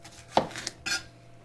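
A knife chopping through half a red bell pepper in a home kitchen: a few crisp, uneven cuts, with a sharp knock on the board followed by a brighter, crunchy slice, and no talking.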